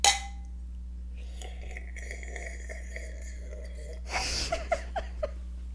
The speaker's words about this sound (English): Oh, you want to cheers these? We should.